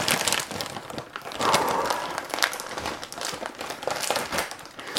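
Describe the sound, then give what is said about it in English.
A sealed snack bag is torn open, giving a steady crinkly plastic rustle broken by sharp crackling bursts, fairly loud throughout with no voices. “I am just going to rip it.”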